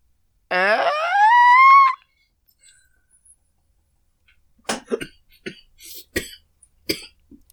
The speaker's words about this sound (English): You've been smoking on Gandalf's pipe, I can tell from that cough you've got.